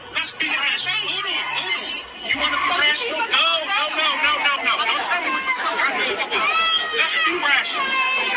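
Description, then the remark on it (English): A baby cries in high, wavering wails that rise toward the end, mixed into a steady hubbub of overlapping crowd chatter that persists throughout. “So that's is the baby.”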